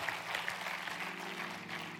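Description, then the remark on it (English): A crowd claps together in a dense, steady wash of applause, many hands blending into a continuous patter with faint sharper claps standing out now and then. “Now everybody claps.”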